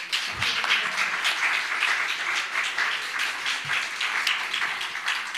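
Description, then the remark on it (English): A crowd claps steadily for several seconds, a dense, even wash of many hands applauding at a constant, fairly loud level with no voices over it. “You can clap now.”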